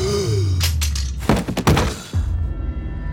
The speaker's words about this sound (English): Zorro's blade shot in again and came out dripping red. The captain gasped and slumped to the floor.